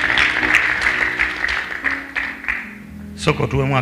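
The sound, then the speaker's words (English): An audience claps for the Lord together in a dense, steady burst of applause for about three seconds, then the clapping thins as a voice begins speaking at the end. “Please clap for him.”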